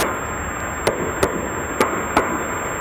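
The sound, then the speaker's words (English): Four sharp underwater knocks ring out in two evenly spaced pairs against a steady background hiss with a thin high-pitched whine, with no voices present. These are the mystery banging sounds heard underwater during the search for the missing Titan submersible; researchers say they were likely caused by colliding sea debris. “Investigators have just shared for the first time the mystery banging sounds heard underwater during last June's frantic search for that missing Titan submersible.”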